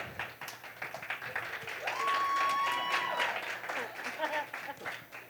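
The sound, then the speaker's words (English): An audience breaks into loud applause and cheering to cast a vote, dense clapping throughout, with a long, steady whistle ringing over the middle before the clapping gradually thins out. “We're going to choose by our audience applause.”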